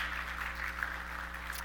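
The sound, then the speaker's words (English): A church audience claps in a steady, dense patter for a couple of seconds, at moderate volume, celebrating the birth of a couple's baby, with a low electrical hum running underneath and no voices. “Yeah, you can give them like applause.”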